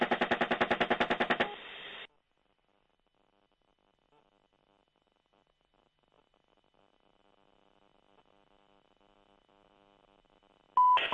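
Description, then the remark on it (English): A rapid, loud burst of gunfire from a helicopter with the call sign Crazy Horse, shooting at a truck, rattles for about a second and a half, followed by near silence and a low rhythmic hum, then a brief sharp electronic tone at the end. “Go ahead, shoot it.”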